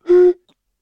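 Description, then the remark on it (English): A single hollow, breathy tone of air blown across the mouth of a beer bottle after a sip, imitating a descending bass line, held steady for a moment and then cut off, loud with no talking. “And I just had a thought as I was drinking a beer that every time you take a sip, it gets lower.”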